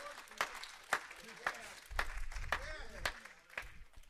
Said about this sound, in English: If you have mustard seed faith, won't you give God a hand clap of praise? Amen.